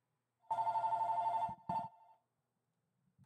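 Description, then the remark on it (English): A telephone rings with a steady electronic trill for about a second, then a shorter second burst follows and fades. Nobody speaks. “Oh, of course, the phone rings. Anybody want to get that?”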